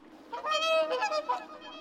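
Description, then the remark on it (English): A young swan on the water, stretching its neck toward birds flying overhead, gives a strange, harsh honking cry. A few rough, strained calls run together for about a second, fairly loud, with no one speaking. “He whirled himself in the water like a wheel, stretched out on his neck towards them, and uttered a cry so strange that it frightened himself.”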